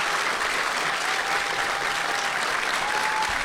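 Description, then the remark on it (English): A large audience at a live show of Do Go On applauds steadily, a dense, even wash of clapping that holds at a constant loud level throughout without fading. “You clapped for a long time.”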